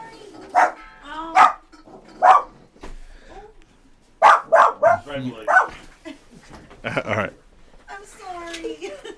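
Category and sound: animal, dog barking excitedly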